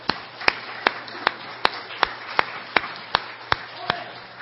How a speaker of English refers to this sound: Let's give the Lord one more hand clap of praise.